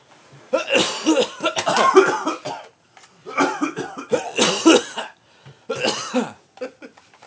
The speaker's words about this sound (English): Well, let me try coughing into her. Come on. She might need another man's saliva. All right, you cough into. Okay, hold on. Let me cough into that. You cough into the NES.